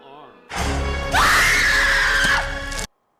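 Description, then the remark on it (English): A woman in a horror film scene lets out a loud, sustained scream for over a second, rising abruptly over a dense, noisy background of music and effects, then cutting off sharply. “Hey, why did she start screaming before she turned around?”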